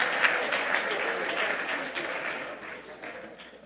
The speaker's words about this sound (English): Let's have a good time. Clap your hands to the Lord tonight.